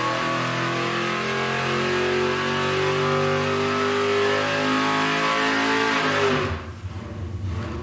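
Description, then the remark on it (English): A car engine revs hard and steadily on a dynamometer, its loud roaring pitch climbing gradually for several seconds before abruptly dropping off into a lower idle rumble. “This machine's a dynamo. It measures the output and lets you fine-tune it.”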